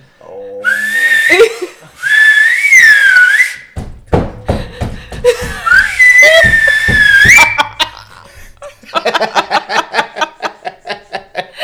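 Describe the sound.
Someone whistles a wavering tune in two loud phrases, with sharp thumping knocks in between, followed by a run of quick, choppy bursts at the end.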